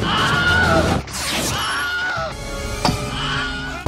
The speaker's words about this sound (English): And if you notice, there's a lot of like movie makers from the 80s and 90s used that scream. Like the William Scream is also in Batman Returns. Yep. Tim Burton used it as well.